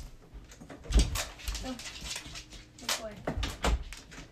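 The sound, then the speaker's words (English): A dog whimpers and whines in short, uneven bursts after jumping off a bed, mixed with soft thumps and shuffling movement, moderately loud. “Okay, my dog is being loud.”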